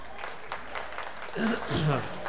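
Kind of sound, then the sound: crowd, audience clapping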